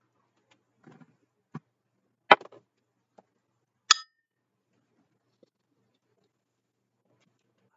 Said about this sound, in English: Clink drink, Tommy. Clink it up, baby. Clink.